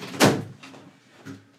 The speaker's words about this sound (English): Someone's knocking at the door. Oh, it might be my painter. You should check. Is it actually on my door? Yeah. It sounds like it.